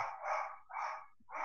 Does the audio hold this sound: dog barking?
yes